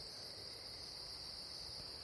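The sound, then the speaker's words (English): A dense chorus of crickets trills steadily and without pause at night, a high, shimmering buzz from many insects at once, fairly soft and continuous over a quiet background with no voices. “And then to my left, there's a whistling group. It sounds like a group. If one person's doing that, like, bravo to you, cricket.”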